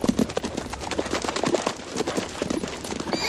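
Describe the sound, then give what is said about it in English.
Horse hooves clip-clop steadily as a rider urges the horse on, a busy run of hard, irregular knocks over a constant rough background, with no voices heard. “Come on, horse. Come on.”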